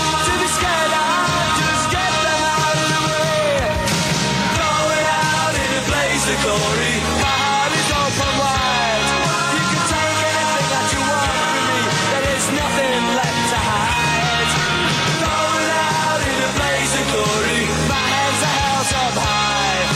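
A loud, dense rock song plays continuously from a recording, with bagpipes, driving full-band instrumentation and strained, screaming vocals riding over the mix for the whole stretch.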